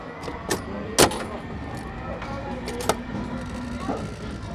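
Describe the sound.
A coin-operated air hockey machine in play at a family fun center: a few sharp, irregular clacks of mallets striking the puck ring out over a steady, airy hum and a murmur of background voices.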